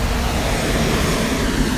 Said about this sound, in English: Sorry, gosh, buses are so loud. But I hope it adds to the atmosphere of my talking.